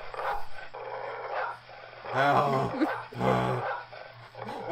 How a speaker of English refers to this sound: I'm surprised they can bark and bite … at the same time